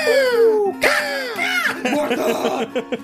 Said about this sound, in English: Whosever idea it was to put the hawk scream in our intro, it's brilliant. It has literally elevated our show beyond anything that we could have ever done.